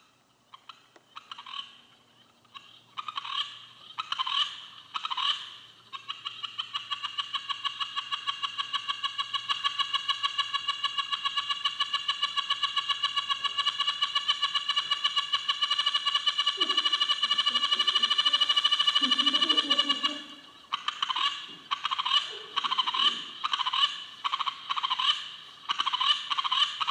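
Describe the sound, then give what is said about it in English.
A Watchelin frog (Latoria watchelimensis) calls loudly: a run of short, pulsed nasal notes swells into a long unbroken trill lasting many seconds, then breaks back into choppy repeated pulses. “Okay, that's the Watchelin frog, Latoria watchelimensis.”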